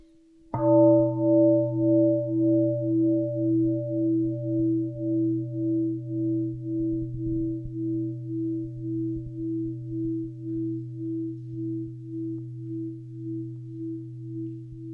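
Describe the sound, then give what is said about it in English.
A single meditation bell is struck once and left to ring, its low, warm tone lingering for many seconds with a slow, pulsing waver as it gradually fades. No voices are heard. “And so when we come back to our, when we hear the bell and come back to our breathing, and aware that we have this wonderful body, this is life.”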